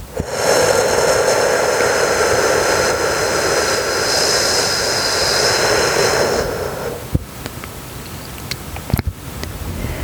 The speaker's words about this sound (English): Inhale through your nose for a count of four. Holding for a count of seven. Exhale completely through your mouth, making the whooshing sound for a count of eight.